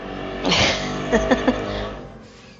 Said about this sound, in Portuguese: Agora o carro passando aí pra todo mundo ouvir.